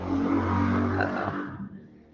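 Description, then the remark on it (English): Motorcycle engines rev loudly outside in a steady, rumbling roar with a low droning tone, then the noise thins out and fades toward the end. No voices are heard. “The motorcycles are out.”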